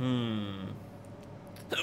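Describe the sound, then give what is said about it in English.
A drawn-out voiced sound fades into quiet room noise, then a single short, sharp hiccup pops out near the end. “First, I get rid of my hiccups.”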